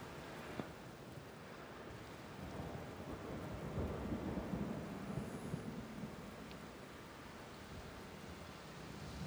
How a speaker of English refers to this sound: You step out into the rain, which is pouring down